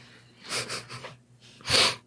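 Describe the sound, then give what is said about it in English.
A few quick, breathy catches build up before one sharp, loud sneeze bursts out near the end, with no talking. “Oh, did you sneeze?”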